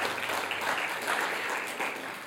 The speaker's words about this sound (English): Come on, can you give the Lord a hand clap of praise?